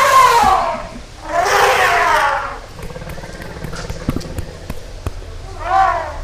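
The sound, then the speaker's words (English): Two loud, brassy elephant trumpet blasts, then a stretch of dull, irregular stamping thuds, ending with a shorter third trumpet call. “we will get the audience to make the elephant stamp noise”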